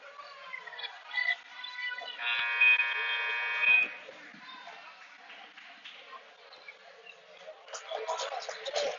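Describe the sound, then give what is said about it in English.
A loud arena buzzer blares once for about a second and a half during a basketball game between Trinity and Bardstown with 18 seconds to go, cutting through the steady murmur and chatter of a crowd in a gym. “18 seconds to go, and buzzer coming off to get back on the court.”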